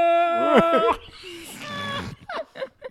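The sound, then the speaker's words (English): A voice imitates whale calls with a loud, wavering, high moan that bends up and down, then a thinner sustained wail, followed by a few short vocal bursts. “I'm not sure what that means, but no, the whale sounds.”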